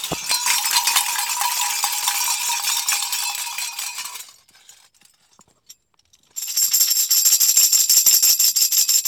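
Bells ring in a dense, bright metallic clangor for about four seconds, fall quiet for a couple of seconds, then start again just as loudly. No voices.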